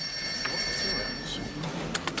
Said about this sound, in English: The phone ringing. When the phone starts ringing.